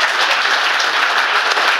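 A crowd claps steadily, a dense, loud patter of many hands that holds evenly throughout with no voices or pauses breaking it.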